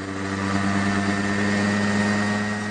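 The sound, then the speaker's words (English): A small remote-controlled helicopter armed with an array of cameras, one using infrared to film at night, is tested by a Spanish firm in Murcia. Its engine drones steadily, a loud, even mechanical hum with a strong low tone and layered harmonics that never changes pitch. No voices are heard. “This is from a video of a Spanish firm in Murcia testing a small remote-controlled helicopter armed with an array of cameras, including one that uses infrared to film at night.”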